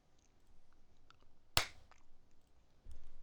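A single sharp hand clap cracks out once, loud and brief with a quick decay, over a faint low background hum; no one speaks.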